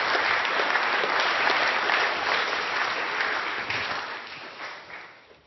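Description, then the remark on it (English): A crowd breaks into loud, sustained applause, a dense wash of many hands clapping that holds steady for several seconds before gradually thinning and fading out at the end. “Can you give them all a really big clap? A really big clap.”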